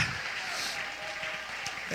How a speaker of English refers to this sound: If he's ever done that, would you clap your hands and shout hallelujah? Shout hallelujah! Shout hallelujah!